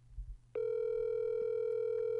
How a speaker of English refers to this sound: I should have called him on the Skype. I don't know why. I called him on my own phone. That works.